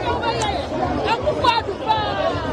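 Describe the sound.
A dense outdoor protest crowd on Kwame Nkrumah Avenue in Ghana murmurs and chatters continuously, many overlapping voices blending into a steady babble with occasional louder shouts rising above it.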